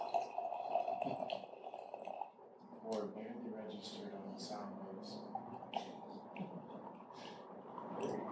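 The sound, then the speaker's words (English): Liquid pours steadily from a container, a wet gurgling stream running for several seconds, with faint murmured voices in the background. “Can I just pour directly from this thing?”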